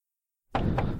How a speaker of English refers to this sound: This is what I'm knocking on, in case you can't hear that.